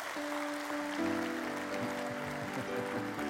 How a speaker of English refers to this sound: And so it's his birthday today, so I think we all need to give him a really good round of applause.